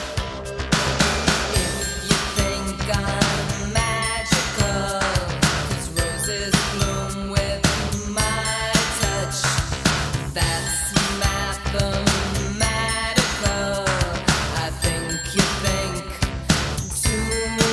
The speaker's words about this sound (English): This song just kind of feels magical. It's the bells, I think. It's just, It makes it work.